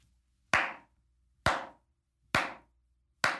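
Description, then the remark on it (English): A slow clap for the president of the United States: four sharp, single hand claps at an even, deliberate pace, about one per second, each loud and crisp with a short decay and silence between them. “Slow clap that builds into an impressive round of applause for the president of the United States.”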